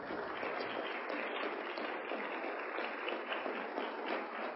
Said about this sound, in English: I want to ask all the teachers and workers, would you please stand so we can see who you are and we can give you another round of applause.